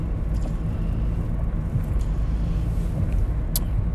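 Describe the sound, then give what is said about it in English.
Steady low rumble of a car interior while driving to work, a continuous engine and road drone with faint ticks and clicks, no talking. “Enjoy the ambient sounds of the car.”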